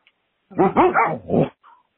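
A dog on a voicemail recording lets out a quick run of three or four loud barks blending into one another, followed by a faint short whine, with no talking.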